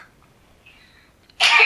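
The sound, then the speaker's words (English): A girl lets out one sudden, loud cough near the end, a sharp harsh burst breaking an otherwise quiet stretch with no talking. “Mom, I just can't stop coughing.”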